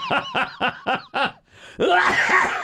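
A loud coughing fit: five quick, rhythmic hacking bursts, a brief pause, then a longer, rougher spluttering cough. No speech is heard.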